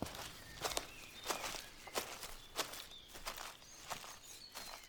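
Footsteps crunch over dry forest floor at a steady walking pace, about eight crisp, brittle steps, with faint high bird chirps in the background and no one speaking.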